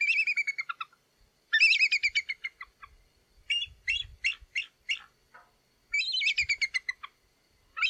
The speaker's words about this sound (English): And so, and the bald eagle, meantime, I don't know if you have time to do this, whoever, if you're listening to this, you know, Google bald eagle sound. It's ridiculous. Oh, I'll do it.